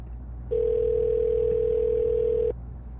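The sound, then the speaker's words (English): A telephone sounds with a single steady electronic tone, held unbroken for about two seconds before cutting off abruptly, over a faint low background hum. “Can't just not answer the phone.”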